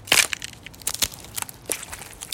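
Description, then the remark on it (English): Crab legs being cracked open: a loud, sharp crunch at the start, then a string of irregular brittle snaps and crackles of varying strength, with no voices. “Wow, these crab legs are great.”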